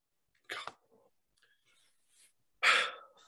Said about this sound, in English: And secondly, if I can get rid of these hiccups, which I probably cannot.